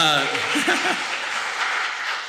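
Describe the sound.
An audience breaks into steady applause for a PhD student from Kenya standing at the back, a dense wash of many hands clapping that holds for a couple of seconds, with a few brief voices heard at the start.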